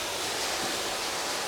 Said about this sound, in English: And in addition to damping the floor down, I mist the plants, just wetting all of the leaves.